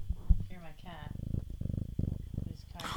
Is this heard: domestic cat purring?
yes